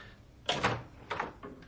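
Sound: door being opened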